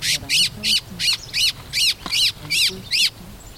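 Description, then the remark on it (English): A distressed white-throated thrush, a medium-sized dark gray bird with a white belly, gives about nine harsh, scratchy calls in a fast, steady series, loud, while being held in the hand during bird fieldwork, over a faint low rumble of background noise. “By the time I arrive around 8 o'clock, they're collecting information on an unhappy white-throated thrush, a medium-sized dark gray bird with a white belly.”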